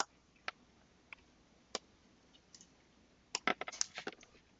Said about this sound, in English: I'm, like, looking at you typing. You're supposed to be talking.